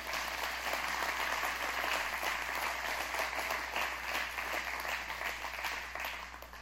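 A church audience claps together as a hand clap for Jesus in a dense, sustained wash of applause, steady and loud for several seconds before easing off slightly at the end, with no voices standing out.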